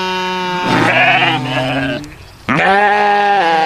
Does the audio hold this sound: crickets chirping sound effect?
no